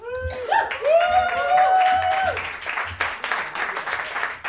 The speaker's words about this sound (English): Yeah. I like that applause, though.